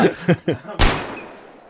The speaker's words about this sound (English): And with some blam-blams, Greg starts firing indiscriminately into the crowd.